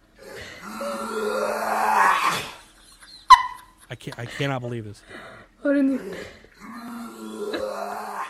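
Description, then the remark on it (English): A dog sitting on a couch gags in two drawn-out bouts of rising, strained retching heaves, fairly loud, with a person briefly speaking in the pause between them. “it's a dog gagging on TikTok”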